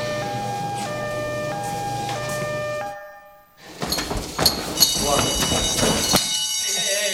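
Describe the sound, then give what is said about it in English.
A fire station alarm blares in steady alternating tones, cuts out briefly, then a louder clamor of ringing tones and bustling noise follows, with voices mixed in. “Wait, no. The alarm.”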